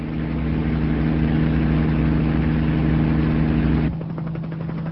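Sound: helicopter engine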